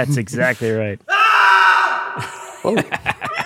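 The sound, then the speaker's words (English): A man lets out a single long, loud scream, about a second and a half, with brief talking just before and after it. “It's just a guy screaming out of nowhere.”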